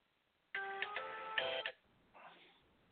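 phone ringing

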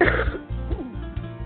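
cough

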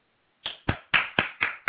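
hand clap

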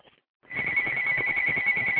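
telephone ringing

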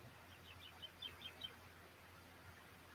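birds chirping outside

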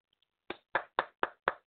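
hands clapping

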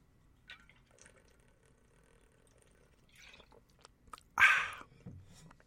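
pouring and drinking water

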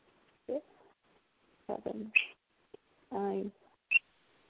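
pet bird chirping

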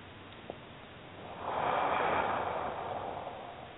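breathing in through nose

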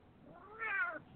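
cat meowing

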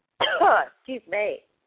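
cough or throat clearing

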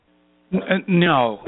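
dogs barking

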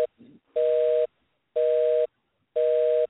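telephone busy signal

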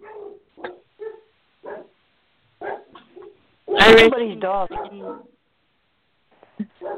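dog barking

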